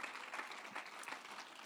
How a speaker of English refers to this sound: If you believe that, clap your hands and thank God for it this morning. Praise God.